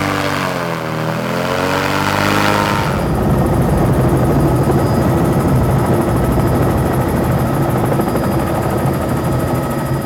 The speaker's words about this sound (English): Right now we're in early May. This is the peak of the dry season, so at this time of the year we have to get to these remote sites by helicopter, which is a quite costly way to access these sites.